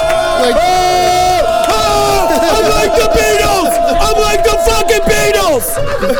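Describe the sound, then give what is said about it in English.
A live audience cheers and screams nonstop, many high-pitched shrieking voices overlapping and wavering in a loud, dense roar that holds steady for about six seconds. “They'll be screaming like a bunch of fucking little girls.”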